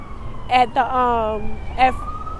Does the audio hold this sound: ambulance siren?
yes